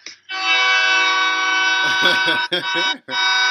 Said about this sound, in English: If a train honks and you don't see it, is it even there?